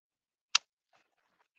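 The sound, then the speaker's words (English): One sharp keyboard click stands out as someone types down information, followed by a couple of much fainter taps spaced irregularly, with no voices and near silence around them. “I'm typing it down.”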